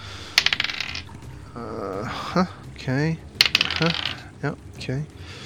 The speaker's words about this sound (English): Okay, rolling some dice.